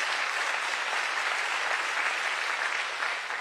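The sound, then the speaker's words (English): A crowd claps together in steady, dense applause, a continuous wash of many hands sustained at an even level for several seconds with no voices standing out. “Can you give the Lord a hand clap of praise about that?”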